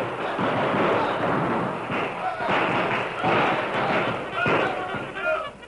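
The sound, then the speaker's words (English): Gunshots and shouts of a battle on a riverbank between blue-coated riders and an outlaw gang, with mules braying: a dense, steady roar of heavy bangs and thuds with overlapping yelling voices, loud throughout, with a few higher-pitched cries rising near the end. “For the next 10 minutes, the banks of the river echoed with shouts and shots and the shrill braying of the mules.”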